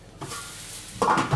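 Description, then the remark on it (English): Leeks sizzle steadily as they fry and sweat down in a hot pan, a crackling hiss that swells briefly near the end as they're stirred, with no voices over it. “Look at those lovely leeks there, frying.”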